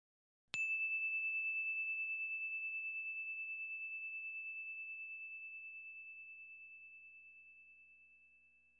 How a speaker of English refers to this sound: Here comes the bell.